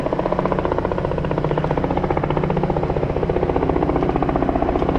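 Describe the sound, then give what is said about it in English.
A medevac helicopter passes overhead, its rotor blades producing a loud, steady, rapid thumping that fills the whole stretch, continuous with no voices. “That chopper, by the way, looks like it's a medevac or something along those lines, so hopefully not coming for me.”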